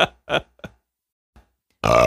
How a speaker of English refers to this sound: Okay, so cut the burp, please. No, you know that's not going to happen. Look, I've had a lot of soda, all right?